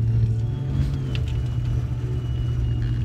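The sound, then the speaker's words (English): A car engine rumbles steadily, a deep, continuous drone with faint higher whine, as the driver drives off on his way to a ranch inside Richland Farms, home of the Compton Cowboys, where he cares for horses; no one speaks. “He takes a giant puff, releases the smoke in the air, and then drives off.”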